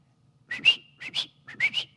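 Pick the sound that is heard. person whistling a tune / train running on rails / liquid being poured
person whistling a tune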